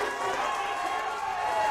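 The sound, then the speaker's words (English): A crowd at a long drive championship reacts to a drive with a steady, dense wash of cheering and murmuring voices, holding at an even loudness through the short moment with no single voice standing out. “The crowd is reaction.”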